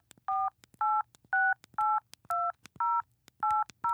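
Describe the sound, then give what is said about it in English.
Phone keypad buttons are pressed eight times in an even rhythm to call a number, each press giving a short, steady two-tone beep, with faint clicks between presses and no talking. “And he looks up on a piece of paper, and then it hits a couple of buttons.”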